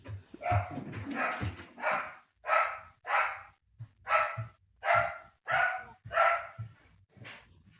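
A pet dog barks repeatedly in a steady, insistent rhythm, around ten sharp barks in quick succession, heard alone with no talking, at moderate volume.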